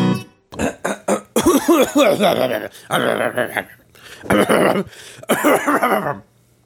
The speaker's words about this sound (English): I just cough like an old man.